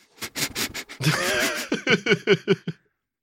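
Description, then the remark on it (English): A person sniffs rapidly and repeatedly like an old hunting dog, trying to sniff out a Cliff Bar: a burst of short sharp inhales, one longer drawn breath, then a quick rhythmic series of snuffs. “I can sniff them out.”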